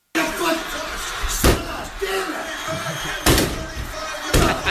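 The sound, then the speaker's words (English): A Georgia Bulldogs fan punches hard through a cheap, hollow wooden door three times, each blow a loud, sharp crack-thud, spaced unevenly over a constant noisy background with voices. “Put through the door. Punching the door. And through the door.”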